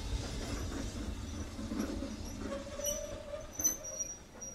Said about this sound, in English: A lot of people getting on and off the train here at Medstead and Four Marks.